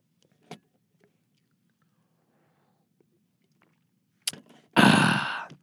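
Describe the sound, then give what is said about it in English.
Someone sips water in a recording booth: a faint click in near-silence, a short wet slurp, then a louder, breathy gulp and swallow at the end. “I'm going to take a sip of this fine, high-quality H2O.”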